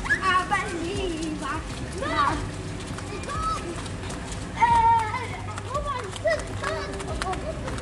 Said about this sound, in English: Sorry, there's people running by.